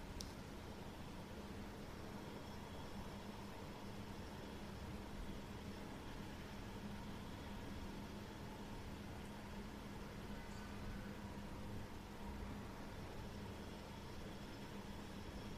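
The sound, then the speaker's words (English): A steady, low traffic hum drones on without a break, a broad rumble of vehicles with a faint constant tone running through it and no voices. “Which membranes are resonating with that, with the low hum, with the traffic hum?”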